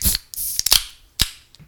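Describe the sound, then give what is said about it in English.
A can of 2023 limited-edition Pepsi cracked open directly into the microphone, with a few sharp metallic clicks and snaps followed by short bursts of fizzy hiss. It's loud, and nobody talks. “Now we have to do the cannon bit with open directly into the mic.”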